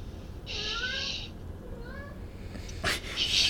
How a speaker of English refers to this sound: It's funny because your cat is talking. My cat is fucking clawing at the door trying to get out to attack the other cat.